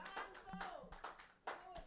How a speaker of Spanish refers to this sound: Denle un aplauso, Señor, gloria a Dios. Un aplauso, Señor, aleluya.